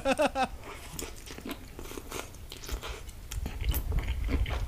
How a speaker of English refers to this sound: he's eating the noodles. This is all I'm seeing and hearing. Like that.